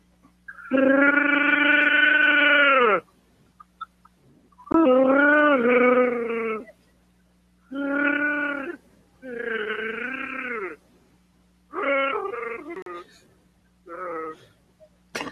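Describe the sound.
A human voice imitates a Wookiee roar as an entry in a Wookiee roar contest, six growling, warbling bursts, the first long and loud, the later ones shorter and choppier, with quiet gaps between them and a low steady hum beneath.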